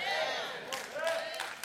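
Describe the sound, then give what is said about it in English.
An audience claps and cheers together, a dense, steady wash of applause with raised voices mixed in, loud throughout and with no single speaker standing out. “Come on now, clap your hands for that.”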